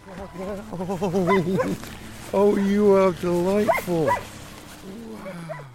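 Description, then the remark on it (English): Sled dogs from a musher's dog teams, used for Arctic sled rides with tourists through Wapusk Adventures, bark and yip excitedly, a cluster of high, whining yelps rising and falling over several seconds, while a person briefly speaks among them. “Now he takes tourists out to experience an Arctic sled ride with his dog teams through his company called Wapusk Adventures.”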